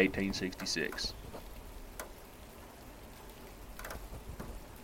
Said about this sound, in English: The rain won't stop.